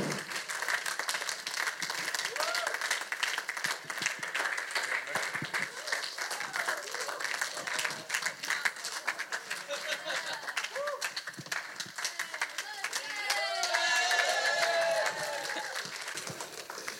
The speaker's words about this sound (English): A round of applause for this champ.